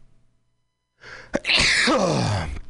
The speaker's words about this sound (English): I have to sneeze.